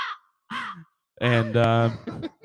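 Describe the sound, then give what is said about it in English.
A crow caws several times, starting with two short harsh calls, then a loud, drawn-out caw, followed by a few softer, choppy calls. “And that the crows are still here to stay.”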